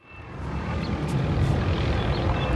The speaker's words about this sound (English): Not just that, there were helicopters patrolling the beach, ordering people to go inside. I took this video of one just on my iPhone.